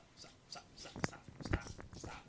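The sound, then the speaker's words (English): A female puppy in a house lets out a few short, high whimpers and yelps in quick succession, craving attention, with faint human voices murmuring in the background. “I have a puppy in my house. And she's kind of cute.”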